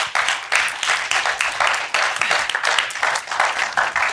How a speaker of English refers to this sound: Let's give a round of applause for these guys. This is pretty awesome.